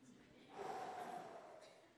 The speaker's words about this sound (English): Breathe. You guys enjoy breathing?